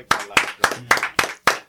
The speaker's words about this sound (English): So let's clap it up real quick